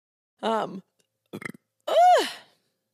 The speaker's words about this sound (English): I apologize. I've been trying not to burp on the internet.